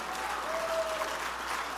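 A crowd claps steadily throughout during a sermon, answering a call to clap their hands and say there's power in the gospel, a dense wash of many hands applauding together with a faint tonal hum running underneath, no clear speech over it.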